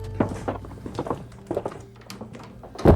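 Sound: front door slamming shut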